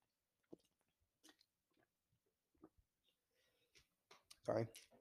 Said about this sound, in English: I'm going to take a little sip of my water real quick. Hold on.